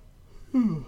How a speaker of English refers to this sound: Boy, that was a... unexpected yawn.